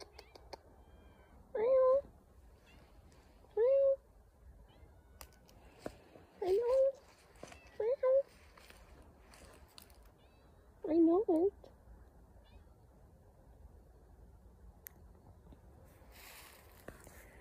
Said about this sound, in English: And my cat is meowing. I'd like to call her my cat, but she's our family outdoor kitty. Where's that meow?